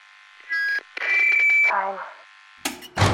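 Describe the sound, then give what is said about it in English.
An apartment intercom buzzer sounds in two harsh, electronic bursts, a short one and then a longer steady buzz, followed by a brief crackly burst of noise, as a resident buzzes a visitor up to the apartment. “The voice buzzes her up.”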